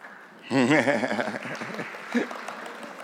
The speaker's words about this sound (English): Polite smattering of applause.